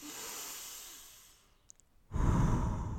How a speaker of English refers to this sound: Breathing through your nose in, out through your mouth again. This time, listen to the sound of your breath.